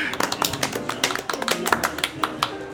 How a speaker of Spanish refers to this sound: Bueno, efectos de aplauso primero.